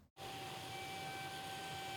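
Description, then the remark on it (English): Large-format printers hum steadily at printing company Blue Media, where workers prepare banners, decals and graphics for Super Bowl 57: a dense mechanical drone with a thin, constant whine running through it, starting right after a brief moment of silence. No one speaks. “Large-format printing company Blue Media is humming.”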